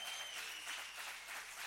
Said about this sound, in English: Clap your hands if you would.